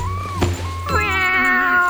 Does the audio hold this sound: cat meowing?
yes